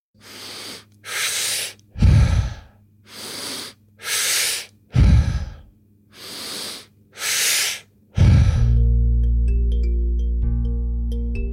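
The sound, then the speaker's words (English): Forceful Wim Hof-style breathing in a steady rhythm, drawn in through the nose from the diaphragm up to the chest, a pause, then out through the mouth, about eight quick cycles with sharp airy rushes, followed by a sustained low musical tone that fades out. No talking. “The first part of the breath is through the nose, and you breathe through your diaphragm up until it like gets to your chest, and then you pause, and then the second part is through the mouth.”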